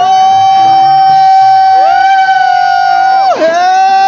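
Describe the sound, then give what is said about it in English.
A church audience shouts and whoops in praise loudly and continuously for several seconds, with a high sustained tone ringing over the crowd noise that bends upward and dips near the end. “Yeah, you can keep shouting.”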